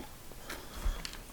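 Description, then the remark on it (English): A quiet, brief slurp of coffee, a couple of soft airy sipping sounds, ending with a sharper knock like a cup being set down. No talking. “All right, a little slurp of coffee, and then we're going to talk about food and water.”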